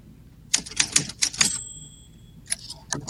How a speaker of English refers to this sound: can you give us a typewriter to move on to the next conversation?